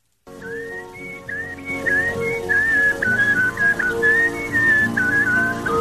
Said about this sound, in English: A dude whistling.